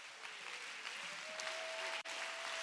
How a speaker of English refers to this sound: I think we ought to give God a hand clap of praise all across this building.